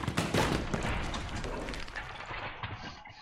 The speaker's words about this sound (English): Sir Munz has finished eating the ham and is proceeding to try and open this footlocker. And it's just, like, throwing it around the room.